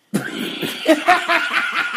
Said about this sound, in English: And some hot apple juice because my throat is, I'm having a coughing issue. Oh, Lord. Not again.